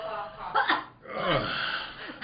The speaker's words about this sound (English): Say, that's a bad cough, son.